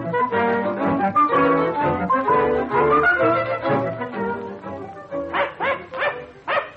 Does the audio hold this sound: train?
no